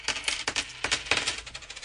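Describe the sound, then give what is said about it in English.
A handful of coins being counted, clinking and dropping onto a hard surface, several bright metallic taps in quick, uneven succession, with no talking. “Is it €3.50 though, Aoife? All these coins.”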